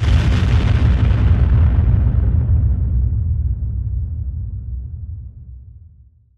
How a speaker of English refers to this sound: And then the Cavalier charges its neutron cannons, firing torpedoes, and they connect. The Humphrey explodes.